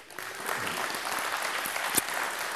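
An audience gives God a praise clap, dense overlapping claps forming a steady, fairly loud wash of applause with one sharper clap standing out near the end.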